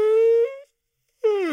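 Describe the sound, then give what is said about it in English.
A voiced yawn: a sustained, fairly high, moan-like vocal tone, then half a second of silence, then a second drawn-out tone that slides downward in pitch. “Sorry, I was going to do Daisy, but I yawned.”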